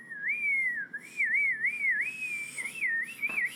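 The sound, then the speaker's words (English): A person whistles a wavering, sliding melody for a few seconds, the pitch rising and dipping in quick loops, clear with no talking over it. “Like, if I had an arrow the way Peter's dad had the arrow and he could, like, whistle.”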